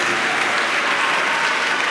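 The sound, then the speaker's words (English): A crowd applauding steadily, a dense wash of many hands clapping at once with no pauses or individual claps standing out, holding an even, fairly loud level throughout. “Some people are not clapping and they are not even feeding five.”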